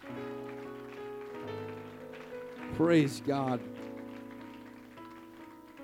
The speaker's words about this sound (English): One more time, let's give the Lord a hand clap of praise in Jesus' name.